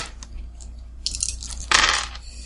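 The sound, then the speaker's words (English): Dice are rolled for a dexterity plus athletics roll, clattering across a hard surface in two bursts of bright, rattling clicks, the second louder and denser, with no one speaking. “And I need you to make a dexterity plus athletics roll to dodge out of the way.”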